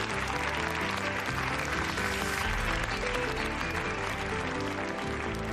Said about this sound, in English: And again, the crowd cheers.